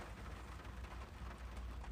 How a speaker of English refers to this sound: The ambiance is nice. The rain is coming down. You know, got the nice sound of the rain in the background.